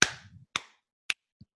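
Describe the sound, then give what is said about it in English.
Four sharp hand claps made to kill a spider, at uneven intervals and loud, with a short ring after the first two and a softer, duller final clap. No talking. “When I see me clapping my hands, I'll take that part out.”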